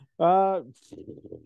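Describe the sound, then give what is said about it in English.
A loud, buzzing fart noise blown with the mouth lasts under half a second and trails off with a wobble. A brief breathy hiss and some quiet, mumbled talking follow. “Fart noises.”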